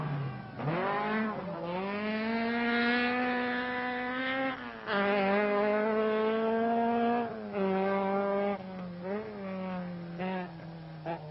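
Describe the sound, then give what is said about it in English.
Fisher's Alamac Opel Manta rally car, prepared by Sydney Meek, races along a stage of the Donegal rally, its engine screaming at full throttle, pitch climbing and then dropping sharply with each of several gear changes, loud and continuous with no voices. “Fisher in the Alamac Manta just cannot shake off his great rival, and his lead could evaporate with a simple puncture.”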